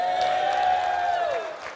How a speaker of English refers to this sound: First statement is this. God creates everything with a purpose. If you believe that, give a shout of praise right now.